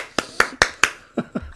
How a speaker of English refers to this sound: I just clapped for my own podcast. Absolutely.